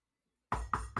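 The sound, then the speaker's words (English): After a moment of silence, three firm knocks land on a door in quick, even succession, fairly loud, each with a short hollow ring. “Knock, knock, knock, knock.”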